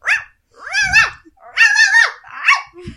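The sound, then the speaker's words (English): A person mimics a dog with a quick run of loud barks and yelps, some drawn out into whiny howls, about five bursts over a few seconds with no ordinary speech. “Sam's got the text up here of the dog's autobiography, and I just want to read a selection for you”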